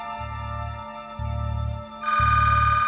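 A telephone rings in a steady repeating pattern, three buzzing pulses over a sustained electronic tone that grows brighter and louder toward the end, with no voices present.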